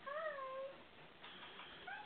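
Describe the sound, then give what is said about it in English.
A cat meows in a drawn-out, wavering cry near the start, followed by a softer, shorter meow at the end, with faint background noise throughout and no talking. “How many cats do you have around here, babe?”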